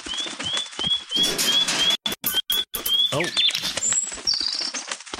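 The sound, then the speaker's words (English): A bird flutters in with rapid wing flaps while repeated high chirps tweet in a steady series, fairly loud, then a couple of brighter calls; a voice briefly exclaims. “Yeah, it's going to get the bird to deliver it.”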